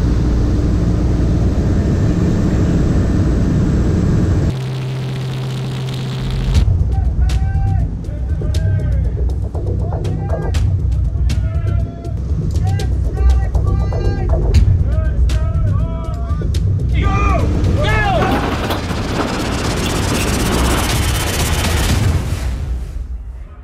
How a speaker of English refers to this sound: Palatka, Florida, and we're going to jump out of that aircraft today, a Kodiak, with our brothers in preparation of D-Day, 75th anniversary.